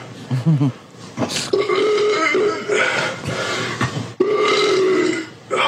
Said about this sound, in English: Damn. Fucking king ass ripper right here. Hairy and gross. Fucking start sending me some gassy ass beans so I can make these farts even bigger.